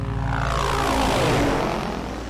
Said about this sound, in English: In moments, Dick Devon's helicopter reaches Futuria.